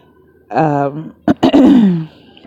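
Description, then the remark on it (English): A voiced throat-clearing noise, then two short, sharp coughs close together, followed by a drawn-out vocal sound trailing off. All of it is fairly loud over a quiet background. “Excuse me for the coughing.”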